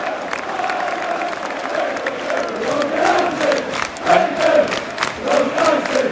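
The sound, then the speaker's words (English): A large crowd of football fans cheering and chanting as players come over to their side of the stadium by the corner flag, a sustained roar with rising and falling shouts and some clapping, continuous for several seconds. “Players obviously enjoying the adulation down the side.”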